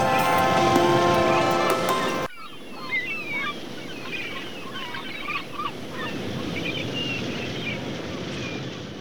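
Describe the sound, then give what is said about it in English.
A short burst of music cuts off abruptly into a steady wash of wind or surf, with many sampled seagull cries calling and overlapping persistently throughout. “The seagulls are a sample. I didn't really go and record seagulls.”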